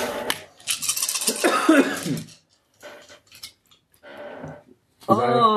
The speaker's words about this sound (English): I rolled a six, and two of my stress dice came up ones.